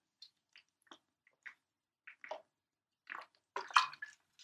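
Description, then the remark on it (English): Someone drinking water: a series of small wet sips and swallows at uneven intervals, ending in a louder burst of gulping. No one talks. “I need some water. Hold on a second. My mouth is getting dry.”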